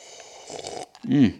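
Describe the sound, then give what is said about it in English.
A soft, hissy sip from a glass of Buffalo Trace bourbon over a couple of ice cubes lasts under a second, followed by a short, low, voiced sigh of satisfaction. “In fact, I'm going to take my Buffalo Trace bourbon that I just recently poured myself with a couple of ice cubes and take a sip right now.”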